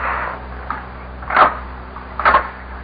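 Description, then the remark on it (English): Two muffled knocks on a wooden door numbered 24, spaced about a second apart, moderately loud over a faint steady hiss, with no voices. “A knock on the door.”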